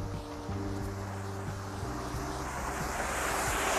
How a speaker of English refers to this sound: Sorry for the background sounds as I'm walking down the neighborhood here in the park and the cars are driving around. You can hear maybe some drops of rain. My footsteps here in the concrete, the wet pavement.